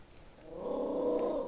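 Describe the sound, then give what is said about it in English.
A dog named Heidi gives a low, sustained growl that swells in after a quiet start and holds steady for about a second, fairly soft, with no talking. “Ooh, somebody's dog's pissed off.”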